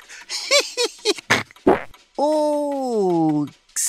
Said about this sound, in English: Yeah, you might have noticed that laughing a lot can also push excess air right out your other end, which is why people sometimes fart.